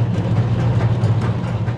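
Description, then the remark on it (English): A large tea pot-dryer machine, essentially a big wok used in tea processing, runs loudly: a steady churning rumble with a strong low hum and a faint rhythmic rattle throughout, with no voices. “And then from there, we'll put it into pot dryer. And it's all it is a big wok, and it's very loud.”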